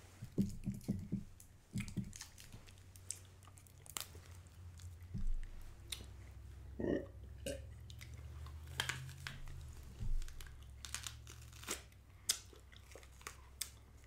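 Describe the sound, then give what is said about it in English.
Wet, squishy chewing of sauce-soaked bread, with irregular soft clicks and smacks over a steady low hum, and no one talking. “I think you should do the honors and eat the bread with him.”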